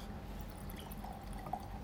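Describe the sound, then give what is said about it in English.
A 2012 South African wine (Radio Lazarus from Alheit) pours softly and steadily into a glass for a couple of seconds, a quiet trickle with a faint drip near the end and no talking. “Let's get some in the glass here. I'll pour for you guys.”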